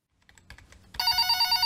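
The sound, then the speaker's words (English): Faint, scattered tapping clicks give way to a loud telephone bell for a call to Cold Dishes Revengeatorium that bursts in about a second later, a bright, shrill, rapidly trilling ring that continues to the end, with no voices. “Thanks for calling Cold Dishes Revengeatorium.”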